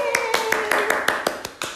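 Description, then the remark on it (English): A quick, steady run of about ten hand claps, close and crisp, evenly spaced, with a faint sustained tone or voice humming underneath. “I wanted to let you guys know they were clapping and I was not.”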